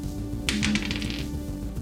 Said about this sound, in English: I rolled a 6, but I got a plus 6 to medicine, so 12.